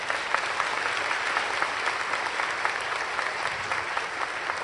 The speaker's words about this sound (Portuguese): Aplaudo o nome de Jesus.